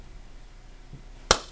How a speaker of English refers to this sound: Beautiful. I did like a slow clap for myself that's at the end of a movie. For the audience listening, because I'm not editing this. That's how we sync the audio to the video.